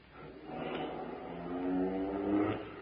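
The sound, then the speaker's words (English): A car engine revs and builds in pitch as it accelerates, a steady rising drone that grows louder toward the end, with no voices over it. It is a getaway car that was parked at the curb, pulling away after a bank robbery. “We backed out of the bank and ran for the car parked at the curb.”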